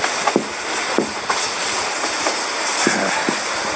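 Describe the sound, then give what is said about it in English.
A subway train rolls along with a steady roaring rumble, punctuated by sharp metallic clacks from the wheels over rail joints every half second or so, loud with no voices. “I'm tired of taking the subway every day.”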